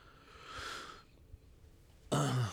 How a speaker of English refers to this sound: Sorry if you just heard me sniffing for like 3 seconds. Yeah, I was smelling essential oils. Very cool. It smells very yummy.